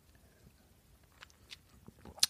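sipping sparkling wine

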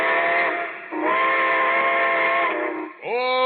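steam train whistle

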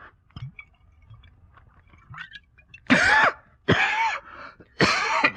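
coughing

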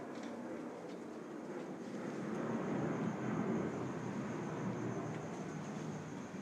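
airplane

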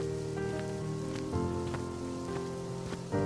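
rain falling

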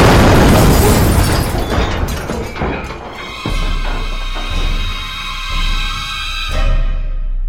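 missile impact explosion

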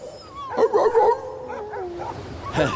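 sled dog team barking

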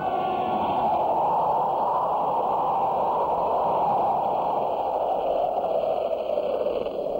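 strong wind blowing

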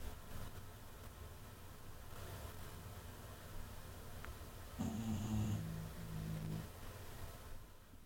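snoring

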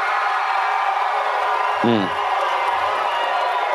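crowd cheering

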